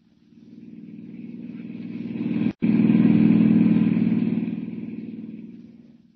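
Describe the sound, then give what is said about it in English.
A hired car's engine drones steadily, swelling with a brief cut in the middle, then gradually fading as the car drives off on a dusty road toward San Miguel, 50 miles away. No voices. “Hiring a car, Clark Kent heads out at once on the dusty road to San Miguel, 50 miles away”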